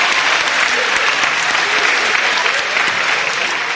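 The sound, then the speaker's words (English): A crowd applauds steadily, a dense, even patter of many hands clapping that stays loud and sustained throughout with no voices standing out. “Can we just give another round of applause?”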